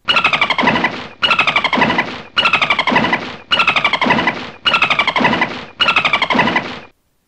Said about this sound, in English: It's a dolphin! Did you guess that one right? I hope so. They make very funny noises, don't they?